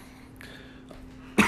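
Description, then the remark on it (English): A single sharp, loud cough bursts out near the end after a quiet stretch of faint hum. “Would not be an episode without me coughing, apparently.”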